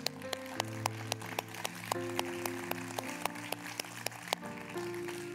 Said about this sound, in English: But I'm believing for salvation today. Can we give God a hand? Is that all right?